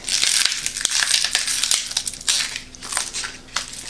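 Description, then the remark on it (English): Brittle cracking and crunching as ice cubes twist free of a lidded ice cube tray, helped out by pushing from the bottom, with sharp clicks and pops scattered through a continuous crackle. No one speaks. “And yeah, that one popped out.”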